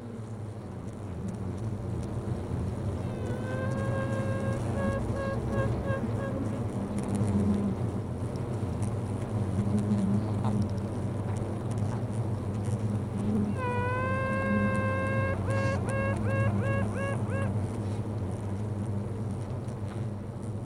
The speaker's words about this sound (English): So I block booked that day off and decided that I was going to spend the day sat at the bottom of the garden with my headphones on and hopefully hear live and record that elusive sound that I was after of the queen bee piping.